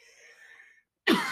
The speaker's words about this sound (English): Excuse me. That's a weed cough.